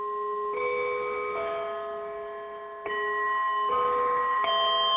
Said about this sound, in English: Ding dong! I'm having fun dinging my bowls today.